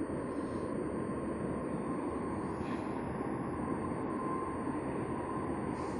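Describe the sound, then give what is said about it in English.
A steady, loud rumbling roar of a train passing close by on tracks among houses, a dense continuous wash of noise that holds at the same level throughout, with no voices. “It must suck to live this close to a train.”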